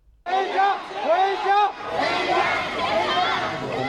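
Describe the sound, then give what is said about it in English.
A large crowd of Nanjing Tech University students protesting China's strict COVID policy on campus in Nanjing, China, chants slogans and shouts in unison, demanding to be allowed to go home. Many voices rise and fall together in loud, rhythmic phrases, followed by a continuous roar of overlapping shouting. “Videos released today show large crowds of Nanjing Tech University students on campus. They were chanting slogans and demanding to be allowed to go home.”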